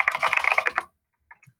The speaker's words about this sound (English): So it's shy Ben's. I'll type it in just so you can get the spelling.